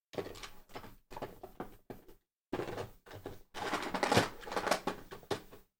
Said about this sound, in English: I own a 2DS. This is real. This is a dusty Legend of Zelda 2DS. Now, give me 5 seconds to put it back in my drawer.